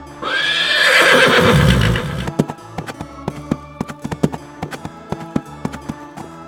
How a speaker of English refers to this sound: And if you hear galloping horses, fly as fast as your feet can take you.